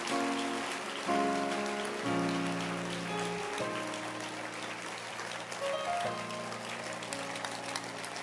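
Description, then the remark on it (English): An audience on its feet claps for the word of God during a church sermon, continuously in a dense, crackling wash of hands, steady and fairly loud, with sustained keyboard or organ chords changing underneath. No one speaks. “Don't stop clapping. Clap for the word of God.”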